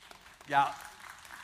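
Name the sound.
audience clapping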